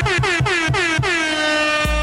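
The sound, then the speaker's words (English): A rapid series of loud, blaring air horn blasts, about six in quick rhythmic succession, each with a descending pitch sweep, followed by a deep low boom at the end. “Letting off mad air horns right now”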